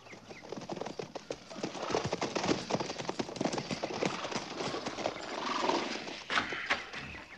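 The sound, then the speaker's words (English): Horses' hooves clip-clop steadily on hard ground, a busy overlapping patter of several animals, with faint rustling and shuffling around them and no voices. “Dismount and unsaddle.”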